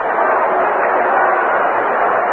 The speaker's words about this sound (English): Now Roger Maris, and listen to the crowd.